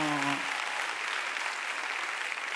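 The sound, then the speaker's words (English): A crowd claps steadily, a dense wash of many hands filling the whole clip, with a brief voice tone at the very start before the applause takes over. “If you want to clap, go for it.”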